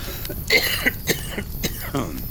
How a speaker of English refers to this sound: And again, sorry for all the coughing. My throat likes to get dry.